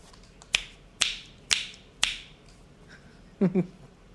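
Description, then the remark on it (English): Four crisp finger snaps ring out in a steady rhythm about half a second apart during a game called Snaps, followed by a brief, low double sound after a short pause. “The name of the game is Snaps.”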